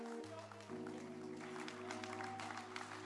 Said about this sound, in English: Oh, your hand clap is very weak.